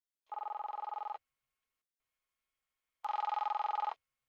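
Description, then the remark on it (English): A telephone rings twice on the line after a number is dialed, each ring a short warbling buzz with a long pause between, clear and alone with no voices. “He silenced the call, then pulled out his own phone and dialed the number.”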